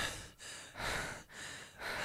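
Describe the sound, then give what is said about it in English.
Heavy, rapid panting by an actor in close succession, with about four loud breathy pulses separated by brief catches in a steady, labored rhythm, with no talking. “The panting acting is big.”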